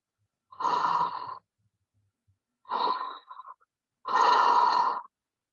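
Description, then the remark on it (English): A training mannequin's simulated breathing: three raspy, wheezy breaths, each about a second long and separated by short pauses, with no talking. “So right now he's breathing.”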